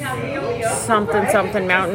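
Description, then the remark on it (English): A voice mumbles in a mock imitation of tourists talking about wine at a wine tasting in Napa, California, a steady stream of indistinct conversational murmur with a few rising inflections, lasting a couple of seconds. “Tourists talking about wine.”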